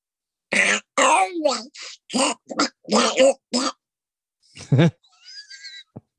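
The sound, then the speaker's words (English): A man imitates Donald Duck's voice: a run of buzzy, squawking quacked syllables in quick bursts, followed by a higher, squeaky sneeze-like duck noise and some thin whistling tones. “Was Donald Duck always doing that, or Donald Duck sneezing?”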